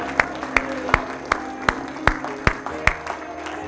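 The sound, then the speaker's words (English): A church audience claps in steady unison, giving Jesus a hand clap of praise: about ten sharp, even beats spaced roughly evenly, over a low sustained musical hum. No one speaks. “Come on, give Jesus a big hand clap of praise one more time.”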